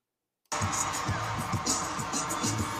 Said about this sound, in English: Just fucking listen to the crowd.